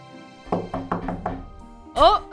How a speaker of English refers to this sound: You hear a car pull up. Footsteps. Ooh. Knocking.